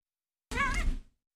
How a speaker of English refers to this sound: What? What are you saying? What do you want? What? I don't know if you guys heard my cat, but she needs attention.